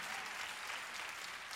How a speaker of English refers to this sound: Come on, clap your hands and give God glory.